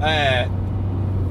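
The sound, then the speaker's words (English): A car engine drones low and steady while a brief strained, whining grind rises over it at the start, like gears refusing to engage, then the motor keeps idling on its own. “I can't get the fucking car in gear.”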